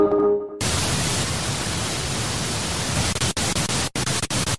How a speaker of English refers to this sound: Static frequencies engage.